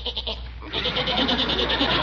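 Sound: goat bleating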